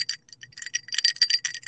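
Ice cubes clink and rattle against the sides of a glass of water in an apartment in a quick, irregular burst of bright, tinkling knocks, with a soft low rumble underneath and no voices.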